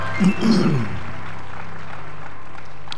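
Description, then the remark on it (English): A short burst of audience hand clapping in praise to God swells briefly and fades within about a second, leaving a low, steady hum of room noise with no talking. “Come on, let's give God a strong hand clap of praise.”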